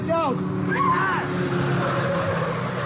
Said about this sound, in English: Just as they start across the street, a little black sedan swings around the corner and heads for them fast.